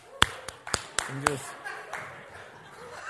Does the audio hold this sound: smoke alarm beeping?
no